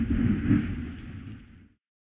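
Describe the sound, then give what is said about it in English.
A deep, loud rumble of thunder rolls for under two seconds with a hiss of pouring rain over it, then cuts off abruptly. No one speaks. “I hear the thunder now.”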